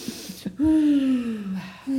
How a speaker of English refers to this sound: We need to cleanse ourselves. Yeah, let's do a breathing exercise.